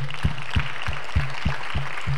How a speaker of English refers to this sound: So again, I'm going to give us a minute, just about 3 seconds, to just pause and parenthetically, let's give God a hand clap of praise right now.